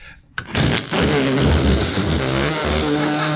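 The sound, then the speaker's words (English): A person imitates a vacuum cleaner with their voice, a sudden onset followed by a steady, loud, breathy whooshing drone with a low hum underneath, held without a break for about three seconds. “Starting with the vacuum cleaner.”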